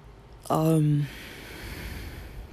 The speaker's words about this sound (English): But yeah, I just started yawning.